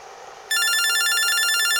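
A telephone bell at the Demi Cabs firm starts ringing abruptly, a loud, rapid metallic trill with bright high tones, continuing steadily after a brief quiet moment.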